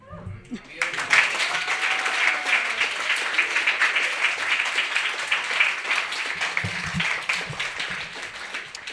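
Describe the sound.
An audience breaks into sustained applause for the eighth performer of the night, a dense, steady wash of many hands clapping that starts abruptly and carries on loudly to the end, with faint voices briefly audible underneath.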